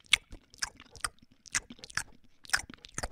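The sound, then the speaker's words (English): Wet, crunchy chewing of a burger, with irregular bursts of biting and mastication repeating roughly every half second, moderately loud and with no talking. “Hey, Elizabeth, if you're listening to this, I'm eating this burger right now.”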